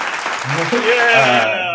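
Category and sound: sound effect, clapping sound effect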